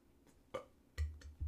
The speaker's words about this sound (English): Damn, you really just burped into our microphone.